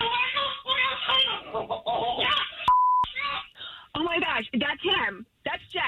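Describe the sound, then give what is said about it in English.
An African grey parrot chatters in a run of warbling, speech-like squawks and clucks, broken midway by a short, pure whistled beep that sounds like an electronic tone. “An African gray parrot can live 60 years.”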